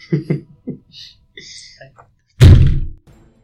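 A few quick muffled thumps, then a single loud, heavy bang like something striking a door hard, ringing out briefly before fading. Faint tonal noises sit between the hits.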